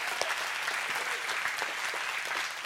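A steady round of audience applause, dense overlapping claps forming a bright, continuous wash at even loudness throughout, with no voices standing out.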